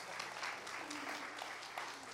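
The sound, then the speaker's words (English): A crowd claps steadily in a dense, sustained burst of applause, the many overlapping hand claps blending into a continuous wash of sound. “You can clap because it's real.”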